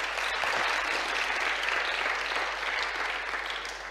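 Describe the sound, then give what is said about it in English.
A crowd applauds steadily, a dense, even wash of many hands clapping at once that holds its loudness for the whole stretch before easing slightly at the end. “We should give them a cheer.”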